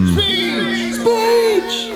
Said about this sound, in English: And the slaves and the members of the Alliance all begin to cheer your names, making a path as you walk into the center of the crowd.